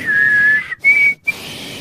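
Someone whistles a slow, gentle melody, holding a long steady note, then stepping up to a slightly higher sustained note after a brief breath, with no talking.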